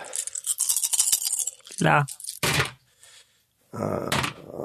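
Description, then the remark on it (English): A handful of dice are all rolled at once, rattling and clattering together in a dense, scratchy burst lasting under two seconds, followed by a short sung vocal phrase and some talking. “Actually, I'm going to roll all the dice as well, just in case, because I like hearing it all hit at the same time.”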